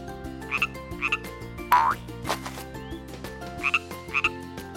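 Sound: frog croaking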